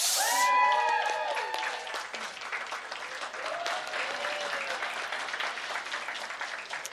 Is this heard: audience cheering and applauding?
yes